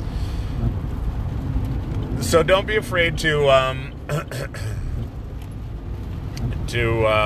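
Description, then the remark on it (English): A steady, low rumble of a car driving along a rainy road, heard from inside, with a man talking over the constant road and engine noise. “So, sorry, it's rainy and people are a little squirrely out here today on the drive.”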